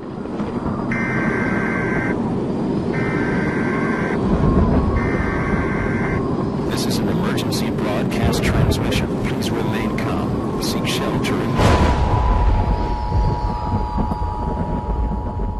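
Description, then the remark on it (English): Emergency Alert System tones in a promo for the Jacksonville Jaguars football team aired by a station in Jacksonville, Florida: three evenly spaced bursts of buzzy, warbling data tones, then a stretch of loud crashing, clattering noise, followed by a steady, piercing two-tone alert hum that holds to the end. “So why are these tones so protected?”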